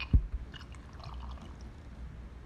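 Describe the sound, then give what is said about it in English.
Devil's Cut bourbon whiskey is poured into a glass, a soft liquid splash and gurgle opening with a sharp clink, then a quiet trickling that fades over a couple of seconds. “No, we're giving you devil's cut because we already have devil's cut in our glass. Here you go”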